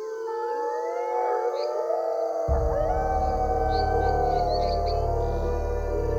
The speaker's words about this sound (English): A cacophony of howling burst forth from the surrounding forest.